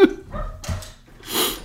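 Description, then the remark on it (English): A female dog at a door barks several times in quick succession, sharp yips and woofs with short gaps between them and no talking over the barks. “She will bark at some point and I will lose my temper and I'll hear that on mic too.”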